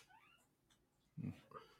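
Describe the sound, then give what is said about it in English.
Guinea pigs squeak in the background: a few faint, high, sliding squeaks, then a couple of short, louder chirping calls close together near the end. No one speaks. “Yeah, I hear you, guinea pigs.”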